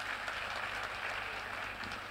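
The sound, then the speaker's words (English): A crowd claps steadily for about two seconds, a dense, even patter of many hands with no voices breaking through. “I'll be generous with your clapping.”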